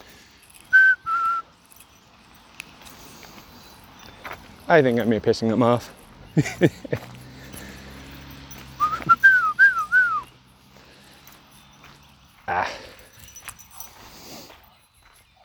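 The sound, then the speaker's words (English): A person whistles to a pet bird, a short two-note phrase, then later a quick warbling run of whistled notes, between bursts of the bird's harsh, squeaky calls and a few spoken words, fairly loud. “Well, yes, I can whistle.”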